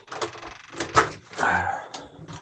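A door opens as someone heads out, with a few knocking clunks followed by a longer scraping slide, then a final soft thud, without any talking.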